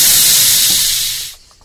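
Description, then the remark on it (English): A swoosh transition effect: a loud, airy, high-pitched rush of noise that holds steady for over a second, then quickly tapers off. No one speaks. “You swooshed it too fast on me there”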